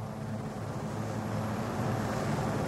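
A helicopter drones steadily and loudly during a rescue from the ocean, its low engine rumble and broad whooshing noise holding constant throughout with no voices.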